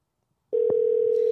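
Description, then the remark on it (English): After a moment of silence, a telephone ringback tone starts abruptly and holds as a steady, loud electronic hum on an outgoing call to a landline, with a faint click just after it begins. “It's ringing.”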